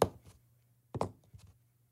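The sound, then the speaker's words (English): Pens tapping on a hard surface in quick uneven clusters, mimicking a horse's galloping hoofbeats: sharp woody clicks, a loud double strike midway, then softer trailing taps. No one speaks. “Now, this is the original way that I originally did it when I was like, oh my God, this sounds just like a horse galloping.”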